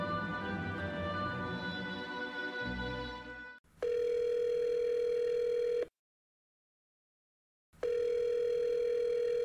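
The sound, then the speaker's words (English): After a brief stretch of music cuts off, a phone line rings out before the call connects: two long, steady buzzing ringback tones separated by a pause of silence, clear, with no one speaking. “Buddy, I'm ready for this phone call, man.”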